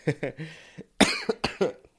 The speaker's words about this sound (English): Excuse me, I had to cough for a sec.